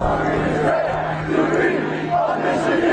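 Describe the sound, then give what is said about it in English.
A large crowd of fans cheers and shouts steadily on the back practice fields at Schembechler Hall in Ann Arbor, welcoming the national champion Michigan Wolverines home from Houston. A dense roar of many voices with rising whoops and yells, loud throughout with no single speaker standing out. “A hero's welcome in Ann Arbor last night as the national champions, the Michigan Wolverines, returned home from Houston.”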